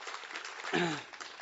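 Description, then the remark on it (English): An audience claps steadily, a dense, even crackle of many hands filling the whole moment, while a single voice briefly calls out over it partway through. “Can you get a, you got a clap for that?”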